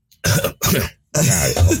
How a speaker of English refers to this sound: Almost coughed up lung.